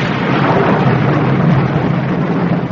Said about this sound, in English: It's quite on the cards that this storm may last all night, so we shall just have to make the best of a bad job.